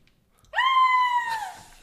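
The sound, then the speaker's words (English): A person imitates a scream with one shrill, sustained vocal shriek lasting about a second, fairly loud, sliding downward at the end, with no talk around it. “Lemon screamed.”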